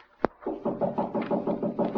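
A single sharp, loud knock on a general's door, followed by a steady, muffled pulsing murmur that continues to the end.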